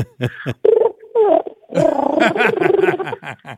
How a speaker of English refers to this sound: Is that yes, sir, in pigeon talk? I think it was. There's a little nopey coming out in the pigeon, if you've heard noticed.